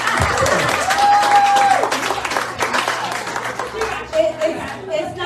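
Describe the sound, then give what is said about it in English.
Loud, steady applause from a crowd fills the whole stretch, dense clapping with a brief high whistle near the start and some voices mixed into the noise. “You can clap for that.”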